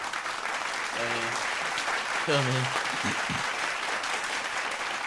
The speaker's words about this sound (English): We're going to clap that up.